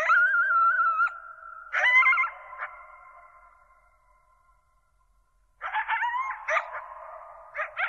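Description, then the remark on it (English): A pack of coyotes, in a nature recording by Gordon, howls and yips together in overlapping, wavering cries that trail off into near silence, then erupt again in a frenzied, high-pitched chorus of yips and howls. “That's a pack of coyotes.”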